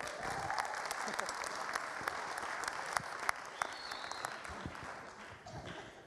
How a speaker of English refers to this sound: Give these guys a clap.